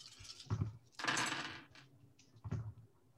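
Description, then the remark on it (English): Eight dice clattering across a hard surface, with a short rattle, then a longer tumbling burst and a final small clack, with no talking. “Seven, eight. It's cool, I have eight dice.”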